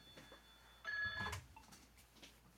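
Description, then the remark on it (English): A telephone in an office gives one short electronic ring, a bright warbling burst lasting under half a second, set against a quiet room with faint background noise and no talking. “Hope you can edit out the phone.”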